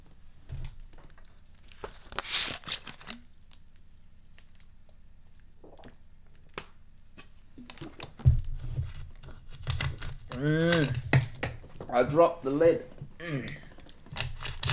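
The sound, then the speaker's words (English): The plastic lid of a 7-Up Free drink bottle drops with one sharp clatter, followed by scattered light clicks and fumbling as it is picked up and screwed back on, then a voice starts talking. “I dropped the lid, but I put the lid back on.”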